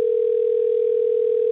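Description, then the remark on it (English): A steady, continuous telephone system tone, heard while dialing in to access voicemail remotely, holds at one pitch for the full second and a half, clear and moderately loud with no voices over it. “I'm going to bring it up on the phone system here. So you can access my voicemail remotely.”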